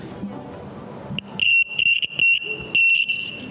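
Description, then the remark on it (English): An electric buzzer in a buzzer test game sounds in four loud, shrill bursts over about two seconds, each a steady high-pitched tone, separated by brief gaps, with faint background noise before it starts. “We must not hear a buzzer.”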